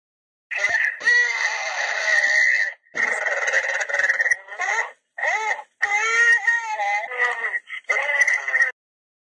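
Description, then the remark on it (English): Loud, strained wailing cries like distressed moans or screams on a voicemail recording come in several long bursts separated by brief pauses, harsh, some almost inhuman, with no clear speech. “So just replaying a part of the audio again, I can definitely hear what sounds like moans or maybe screaming in that very short time frame.”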